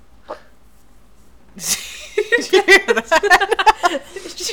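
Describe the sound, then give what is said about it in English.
A squishy bow bun toy is squeezed in someone's hand, letting out a raspy farting noise: a sudden rough burst followed by a quick, uneven run of sputtering squeaks and puffs, fairly loud, with no talking. “But her squishy bow bun made a farting noise in her hand.”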